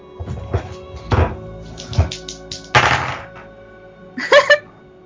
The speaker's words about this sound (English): I hear dice.